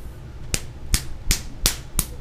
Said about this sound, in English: Yeah, I was trying to see if I could get some good slapping sound effects there.